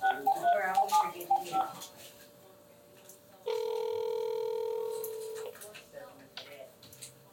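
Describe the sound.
An outgoing phone call rings: a steady electronic ringback tone holds for about two seconds, preceded by brief chirpy beeps, with faint background voices around it.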